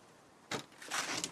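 The front door of a retired secondary school teacher's home opens: a sharp latch clunk, then a longer rasping sweep as it swings, ending with a small knock. No one speaks.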